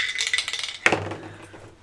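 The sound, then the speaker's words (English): Dice rattle briskly inside a metal tankard used as a dice cup for under a second, then one sharp clank rings out with a bright metallic tone that slowly fades. No one speaks. “Did you got a 6 your tanker as a dice cup?”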